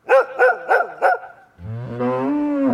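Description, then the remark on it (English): A farm dog barks at cattle four times in a quick, even rhythm, loud, and then a cow lets out a long, low moo that swells and holds steady. “When the dog barked up a fuss, the cows would get antsy.”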